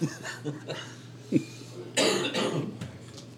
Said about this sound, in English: I apologize if I cough